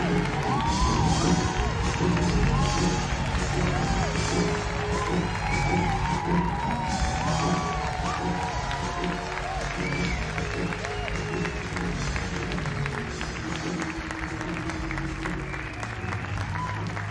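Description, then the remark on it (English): A large concert crowd cheers and applauds continuously, a dense roar of clapping and scattered whoops and shouts that holds steady and loud for the whole stretch before easing slightly. “Man, I cannot believe that crowd.”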